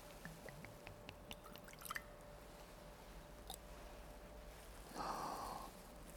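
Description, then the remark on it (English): A few faint drips tick at the start, then a short trickle of water pours into a chalice for about half a second during a liturgical prayer. It's quiet, with a faint steady hum underneath and no talking. “By the mingling of this water, we might become partakers of his divinity, and became partaker of our humanity.”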